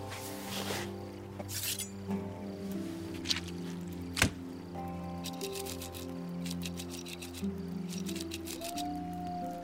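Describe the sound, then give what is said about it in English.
Coyotes howl in long, sustained tones that overlap and waver, with scattered sharp clicks and a loud snap midway; no one speaks. “Just some coyotes.”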